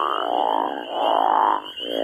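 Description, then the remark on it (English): A loud crawfish frog call, a species threatened and endangered in Indiana: a long rasping snore that holds for over a second, breaks off briefly, then starts again, with no voices. “Like there's a crawfish frog that's threatened and endangered in Indiana.”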